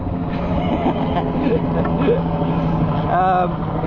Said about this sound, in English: And okay, there's a helicopter just trying to steal my preach. Go away!